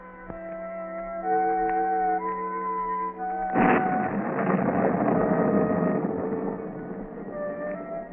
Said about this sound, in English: The rain beats down in torrents, and during the brief flashes of lightning, a certain stone building stands out in the darkness of the night, the courthouse of a county in a southwestern state.